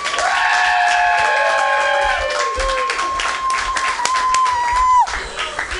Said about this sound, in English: Keep that clapping for the godfather of San Francisco comedy, Tony Sparks.